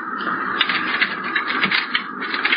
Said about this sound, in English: Now here, pick up these keys and open that door. Go on.